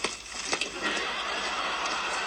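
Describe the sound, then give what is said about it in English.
A horse whinnies against a busy, noisy background, with a few sharp clattering hoof knocks near the start as a carriage rolls along. No one speaks. “Basically here, they're all dressed in the horse, which is pulling the carriage.”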